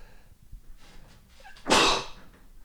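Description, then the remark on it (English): A single loud sneeze bursts out after a couple of seconds of quiet breathing and small mouth noises, ending abruptly with no talking. “Let me sneeze here.”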